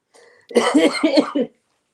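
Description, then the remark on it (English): A short coughing fit: four harsh coughs in quick succession, preceded by a faint breathy rasp and followed by silence. “I'm going to go sneak and grab cough drops while you read this next story.”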